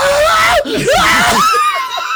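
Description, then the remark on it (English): A man in a video screams and wails loudly as a bear comes at him, his voice rising and falling in strained, pitch-sliding cries that break off briefly and resume for about two seconds. “He's screaming his ass off. He was wailing.”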